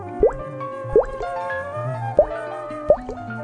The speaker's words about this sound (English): Then something wet fell on his toes. Drip, drop, plip, plop.